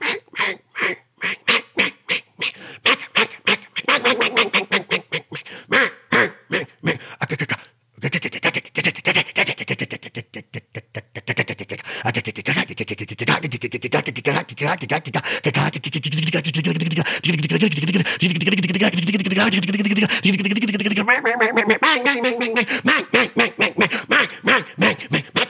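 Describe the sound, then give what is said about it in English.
A person imitates a hen mallard, starting with a quick series of choppy quacks and moving into long, drawn-out nasal duck calls, loud with no talking. “That's how that hen mallard talks.”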